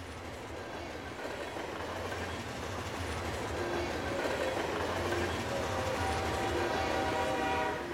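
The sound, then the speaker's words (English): A train travelling to Sha Tin, Hong Kong, rumbles steadily along the rails, with a continuous low roar, rhythmic rattling of the cars and faint high squeals from the wheels. “Christopher Poe looked out the window of the train in excitement.”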